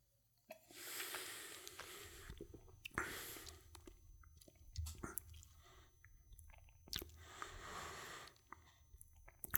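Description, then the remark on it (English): Quiet mouth sounds of someone taking a small sip of 63% ABV agricultural rum: a soft slurp followed by wet swishing, smacking and swallowing, repeated in a few bursts with no talking. “All right, let's go ahead and for a taste. Small sip to start.”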